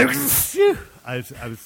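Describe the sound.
A sharp, hissy sneeze burst followed by several short voiced syllables as the phrase "I'm going to sneeze" is sneezed out, ending in a quick rhythmic pair of vocal sounds.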